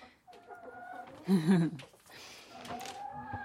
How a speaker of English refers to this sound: So I've got some new chickens. Of course, it wasn't going to be long until I increased my flock.